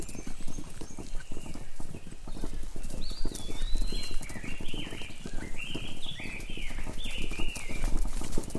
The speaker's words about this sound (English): Where did that mad woman find horses?